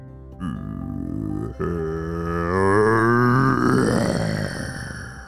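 A deep, guttural monster growl pours out from the shaking ground on a beach, swelling and rumbling for several seconds, rising in pitch and loudness before slowly trailing off, with no talking over it.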